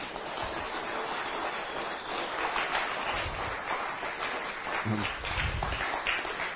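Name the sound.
audience hand clapping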